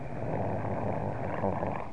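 A male Rottweiler growls low and steadily in his throat for about two seconds, a continuous rumbling snarl, with no talking over it.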